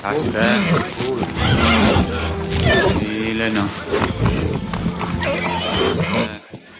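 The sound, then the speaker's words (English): A horse neighs and whinnies repeatedly, loud, with restless hoof sounds mixed in, while a man speaks calmly in Old English throughout, calming the horse down. “So it's a little hard to hear, but basically he's calming down a horse.”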